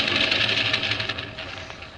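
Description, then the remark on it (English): An airplane engine on an airfield gives a steady mechanical roar that starts to wind down, its hiss and rumble fading over about two seconds as it is shut off before takeoff. No voices are heard. “Shut it off before you take off! I'm cutting it off!”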